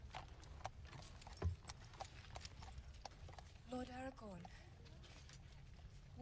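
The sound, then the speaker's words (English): Horse hooves clip-clop in a steady rhythm over a low rumbling background, with a short tonal, voice-like call breaking in about two-thirds of the way through. “Let me help you off the horse here, buddy.”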